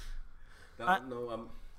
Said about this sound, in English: So that was the collective gasp. The collective gasp of despair. Of all of the listeners right now.